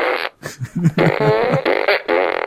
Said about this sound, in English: So they decided to just play fart sounds.